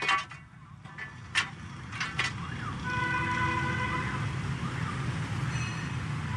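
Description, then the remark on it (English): Dense street traffic in Vietnam rumbles steadily while a wailing siren rises and falls over it from about halfway through, with a few sharp clanks and knocks near the start. “Vietnam is an incredibly busy place. Traffic everywhere. It's noisy and chaotic.”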